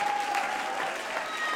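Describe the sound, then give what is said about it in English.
An audience claps loudly and steadily, a dense wash of many hands with no pauses, while faint shouting voices rise within the applause, clapping and shouting praise to the Lord at a night service. “And if you believe the Lord's going to do it, clap your hands to the Lord and give the Lord a shout of praise here tonight.”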